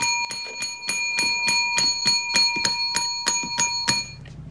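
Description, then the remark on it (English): A bright metallic bell rings over and over in rapid, steady strikes, each ding ringing with sustained overtones, loud, before stopping abruptly near the end. “It just ding, starts ding, ringing ding. The bell until he comes out.”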